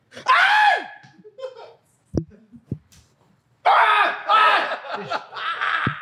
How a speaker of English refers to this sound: Why are you screaming like that? It hurts.